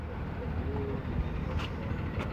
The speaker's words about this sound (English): No, I don't think that's our bus.